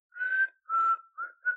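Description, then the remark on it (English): A person whistles a short, sinister-sounding tune: two long held notes followed by two quicker ones, the pitch staying fairly steady, with no talking. It imitates the whistle of L Driver of the Deadly Viper Assassination Squad. “obviously … whistled because I can't”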